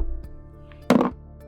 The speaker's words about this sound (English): It can only go up from here, right? Knock on plywood.